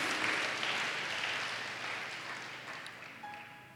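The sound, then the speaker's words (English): A crowd claps steadily for people who have decided to become members, a dense wash of many hands that gradually fades and thins toward the end, with a faint tone briefly sounding near the close. “Clap for the people again who have decided to become members.”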